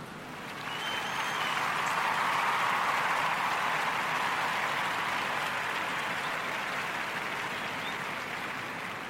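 Steady, full applause from a crowd welcoming a performer making their debut tonight, swelling in over the first second and holding at a dense, even roar of clapping for several seconds before easing slightly at the end.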